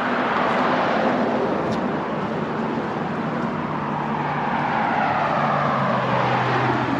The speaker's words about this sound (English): And there's a little bit of traffic here, too.